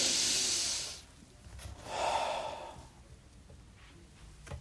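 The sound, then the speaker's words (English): A deep, deliberate, consciously taken breath: a loud, airy inhale for about a second, a brief pause, then a softer, lower exhale. It is clear, with no talking. “Who's consciously taking a breath? One breath can change your whole day.”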